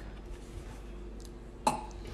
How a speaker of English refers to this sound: Good job. You can burp on command.